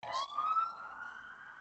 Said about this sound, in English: There's one of them every pod at the minute. That's my South London siren.